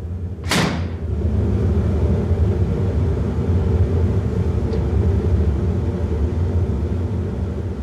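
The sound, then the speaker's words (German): Deep, steady furnace rumble in a bell foundry as bronze bell metal glows yellow-white at 1120 degrees for casting 16 bells in the morning, a low roar that drones on without pause, opened by one sharp bang and later a faint tick. “Die rote Suppe kocht jetzt gelb-weiß. 1120 Grad. 16 Glocken werden heute früh gegossen.”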